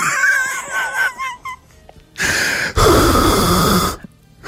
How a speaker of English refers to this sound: This is inside the mask now. You put your top lip out kind of forward a bit. Put your bottom lip underneath it so that your breathing is going down towards your chin.